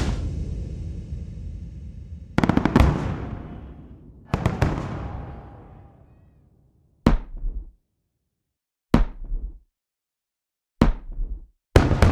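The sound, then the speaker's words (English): Layered explosion sound effects in the breakdown of a song: deep, booming hits in sequence, the first few long and rumbling with trailing decay, followed by shorter, tighter blasts at regular intervals with silence between them. “For the purposes of today's episode, we're going to be concentrating on how I use certain elements and disciplines of sound design to create the stereo landscape of explosion effects in the breakdown of the song.”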